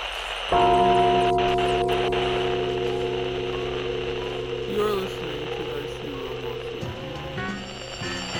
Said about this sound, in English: Let me light this incense. Let's bang this gong and get it on. Get it on.